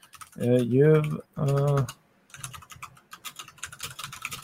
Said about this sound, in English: Sorry about the typing.